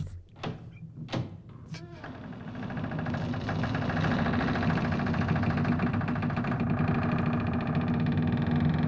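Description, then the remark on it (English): A door creaks open very slowly: a few dull thunks, then a long, drawn-out grinding creak that swells and holds steady and loud for several seconds. “It's the slowest creak of all time.”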